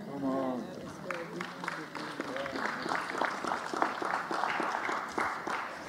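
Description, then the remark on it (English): Light, scattered clapping from a small group, polite golf-style claps in an uneven rhythm, with voices murmuring underneath at the start. “Because I get the golf claps at the end.”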